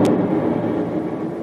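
An explosion in a chemistry lab building that starts a fire: a sharp explosive crack followed by a loud, sustained low rumble that rolls on without fading, dense and heavy across the low end.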